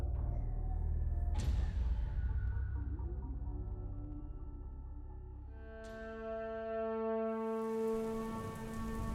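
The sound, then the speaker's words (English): Light rain patters steadily throughout, with a couple of sharper splashes, and a sustained tonal hum rises underneath in the second half. No one speaks. “It was raining when I went out to the beach last night, but it was a light rain”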